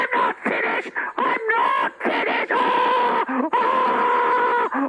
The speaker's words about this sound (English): Stop screaming, Your Majesty! Stop it!